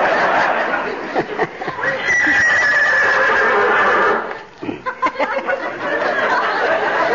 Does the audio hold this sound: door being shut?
no